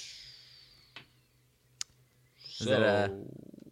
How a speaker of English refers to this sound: We once again find out from the all-knowing cubicle objects, the money line dice, in a 3, a 2, 1.